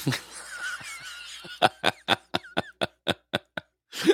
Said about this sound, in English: You're doing dishes during a show. Well, yeah, you're mumbling on about all that other stuff, so decided to get something useful done.